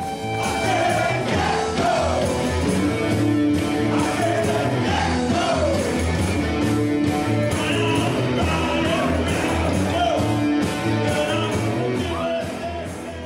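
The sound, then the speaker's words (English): Loud live music blares at a gig while the crowd goes completely wild, yelling, whooping and cheering throughout, the noise dense and continuous from start to finish. “Music vibrates around the room and the crowd go completely wild.”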